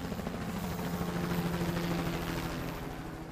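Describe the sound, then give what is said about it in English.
A military helicopter joining a search and rescue operation flies, its rotor blades thumping in a rapid, steady chop over a droning engine hum, loud and sustained throughout with no voices. “However, they were immediately joined by a local police force and even the National Army, with planes and helicopters ordered to join the operation.”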